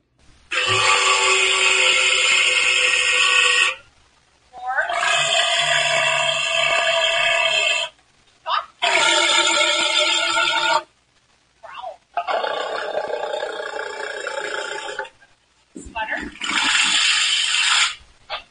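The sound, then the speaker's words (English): A walrus named E.T. at the Point Defiance Zoo and Aquarium practices his vocalizations with five long, loud, brassy bellows. Each lasts a few seconds, with short pauses between, and the grunting calls are rich in buzzy overtones. “that was E.T., the walrus, I love the name, practicing his vocalizations at the Point Defiance Zoo and Aquarium.”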